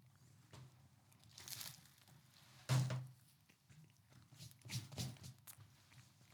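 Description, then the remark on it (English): Crisp crunching of the flaky pastry of a sausage roll being bitten and chewed, with a sharp loud bite near the middle and several softer crackly crunches around it, no talking. “It's like ASMR as well, isn't it? You can hear the crunch.”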